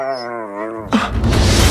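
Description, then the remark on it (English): A dog lets out a drawn-out, wavering howl-like whine, then breaks into a harsh, noisy yelping cry that fills the rest of the moment. “Your general lack of hygiene or your experiment on my dog? Just kill the dog. Again.”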